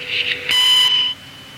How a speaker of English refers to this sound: So leave a message at the beep, please.